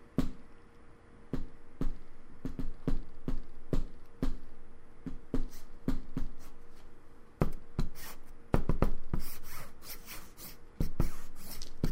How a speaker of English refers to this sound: And you hear... The faintest of clicking, tinkering of metal on bone.